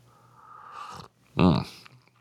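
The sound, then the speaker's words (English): A drawn-out slurping sip of hot Earl Grey tea lasting about a second, followed after a brief pause by a loud, satisfied voiced exhale like an "ahh." “We have to have our inaugural sip here.”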